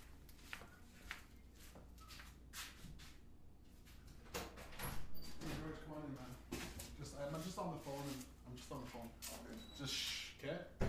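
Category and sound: household object, door opening and closing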